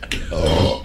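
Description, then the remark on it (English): A single sneeze: a quick breathy burst followed by a short voiced, throaty release, heard on its own without any talking. “Bless you.”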